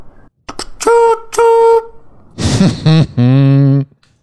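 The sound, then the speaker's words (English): Someone imitates a train with their voice: two short, high, horn-like toots, then a breathy chugging burst and a longer, lower blast, all loud and alone. “Train sound effects.”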